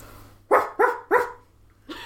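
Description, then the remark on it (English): A person imitates a Border Collie barking, with three quick, sharp barks in a fast rhythm, then a fourth after a short pause, voiced fairly loud. “Give me a dog and I'll bark like it. Border Collie.”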